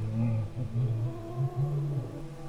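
A cat named Marbles yowls at night in a long, wavering, drawn-out cry that rises and dips in pitch, steady and loud for the full couple of seconds, with no voices.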